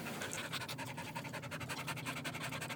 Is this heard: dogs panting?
yes